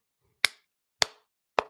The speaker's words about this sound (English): Slow clap. You got to slow clap. It doesn't really work with one person. Let me try it again, though.